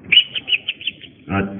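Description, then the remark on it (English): A person imitates a bird's chirp: about six quick, high chirps in a steady rhythm, moderately loud, ending in a short, fuller vocal burst. “Was that the bird?”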